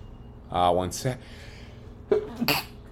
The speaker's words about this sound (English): Excuse me, nothing like an on-air sneeze. I'm not really sure how to edit, so that will not be edited out